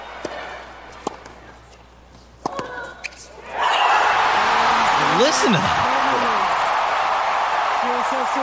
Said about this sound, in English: from Montreal, just turned 19 on the 6th of September, has advanced to the finals of the U.S. Open Tennis Tournament. Yeah, here, listen to this crowd go nuts as she solidifies it yesterday.